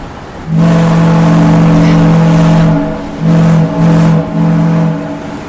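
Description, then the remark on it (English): A ship's foghorn at Woods Hole, on the Cape in Massachusetts, sounds as the ship sets off: a long, deep, droning blast lasting about two seconds, followed by three shorter low blasts in quick succession, loud and steady in pitch with no talking. “That's the foghorn coming directly to you from the Cape over here in Massachusetts.”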